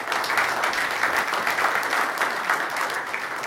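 An audience breaks into sustained applause for a speaker, a dense, steady wash of many hands clapping at an even loudness for several seconds with no voices standing out.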